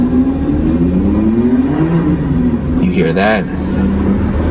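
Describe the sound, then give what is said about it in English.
A sports car engine revs outside, its pitch climbing in steady sweeps under a constant rumble, and then a person briefly speaks over the fading roar. “I was like, whoa, sweet car, man. There's a Porsche out there.”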